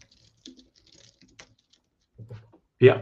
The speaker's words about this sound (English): we can hear you typing as well.